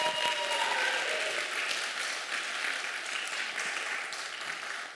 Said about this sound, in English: Come on, let's cheer for them.